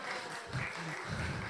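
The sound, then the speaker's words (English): A group of people clapping: a dense, continuous patter of many hands that holds a steady, moderate loudness throughout, with no single voice standing out. “Wow, some people are clapping.”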